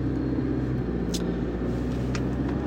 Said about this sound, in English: In terms of noise inside the cabin, this is a diesel, so you do get this sort of truck-like quality to the engine sound. You can hear a bit of the turbo whistling away at higher RPM.